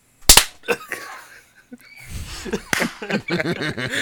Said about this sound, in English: You guys want to clap to try and help sync? We no. could do that real quick. Yeah, everybody clap. Ready? One, two.